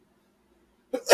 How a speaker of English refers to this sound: Bless you.